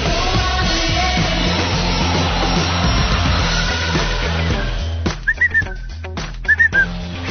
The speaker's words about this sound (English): I think that whistle's cool.